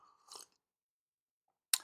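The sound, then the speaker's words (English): Someone takes a soft sip of coffee, a brief slurp, then after a second and a half of silence a second short, sharper sip. Nobody speaks. “Let me have a sip of coffee before I continue.”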